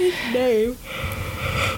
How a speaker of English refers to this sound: So sorry, guys. So sorry, I just yawned.